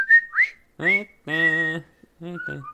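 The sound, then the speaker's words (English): Someone whistles a short tune from the film The Breakfast Club, two quick rising notes and then longer held ones that take on a buzzy, half-hummed quality, with brief pauses between phrases. “I wanted to do the whistling part, but I forgot it.”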